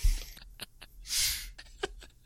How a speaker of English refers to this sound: I have a way to find dead bodies. Oh? Yeah, it's just a little tube you stick up your nose, and at the end of it is a massive cone. And you just sniff.